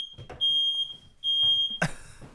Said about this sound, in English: Cue the smoke alarm.